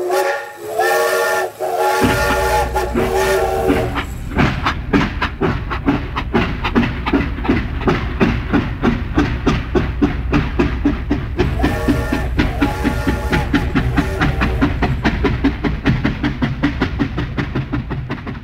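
A steam train's whistle sounds up front, then steady rhythmic chugging takes over, loud, with the whistle blowing again partway through. There is no talking.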